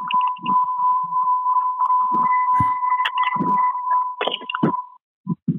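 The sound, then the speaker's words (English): A car beeps with a steady, high electronic tone that holds for several seconds before cutting off, while people keep talking underneath it. “Can you hear that? That's my car.”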